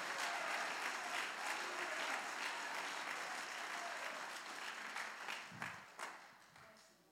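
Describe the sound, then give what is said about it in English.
An audience claps their hands to God in a dense, sustained wash of applause that gradually thins and fades toward the end, sounding like a large crowd. “Somebody clap your hands to God in this house.”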